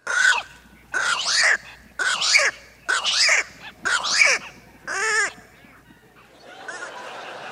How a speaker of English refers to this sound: Yeah, those are pelicans.